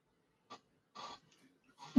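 A few quick, breathy inhales build up before a single loud, sharp sneeze bursts out at the very end. There is no talking.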